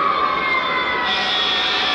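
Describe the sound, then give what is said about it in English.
Emergency vehicle sirens wail steadily and loudly at the Newport Richey Christmas Parade, their tones layered and sustained across the whole stretch with no gaps, amid a dense background roar. “Nothing says Christmas like sirens.”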